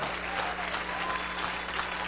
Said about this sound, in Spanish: Yo quiero que tú te pongas de pie un momento y le regales un fuerte aplauso al Espíritu Santo por esa verdad.